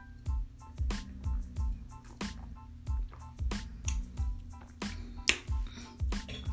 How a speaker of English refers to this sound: Yes, I am smacking my lips.